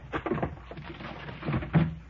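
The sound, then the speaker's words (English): Irregular scraping and thudding as objects are dragged and shoved away from a door, with a few heavier bumps toward the end and no voices. “Yeah, just a minute. I'll get this stuff away from the door.”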